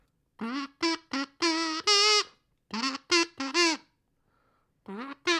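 A kazoo plays a loud, buzzy tune in short bursts, about ten notes grouped in phrases with a pause, some notes held longer and sliding in pitch, with no talking.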